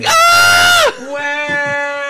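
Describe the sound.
A voice mimics wrestler Jason Jordan screaming in pain as a trainer squeezes his leg: a loud, strained, high-pitched wail lasting nearly a second, then dropping abruptly into a lower, quieter whimpering moan.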